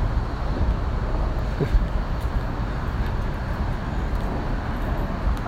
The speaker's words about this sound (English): Just happened to start where you can still probably hear traffic from the bridge above, but you'll likely hear less of that as this continues on.